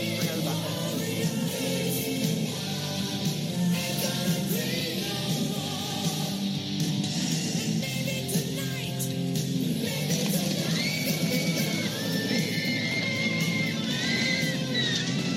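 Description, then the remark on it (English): A screaming electric guitar solo wails over a dense rock band backing, with high, bending sustained notes and fast runs, loud and steady throughout, with no talking. “A screaming guitar solo.”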